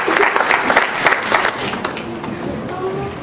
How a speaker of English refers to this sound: A round of applause for our volunteers. Thank you.